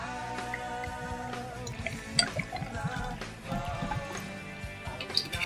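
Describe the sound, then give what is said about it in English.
A couple of drinks are poured into glasses, a steady splashy trickle broken by a few sharper drips and small knocks over about five seconds, with no one talking. “So, I'm going to pour us a couple of those”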